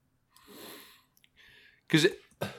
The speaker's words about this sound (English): excuse me, I'm coughing.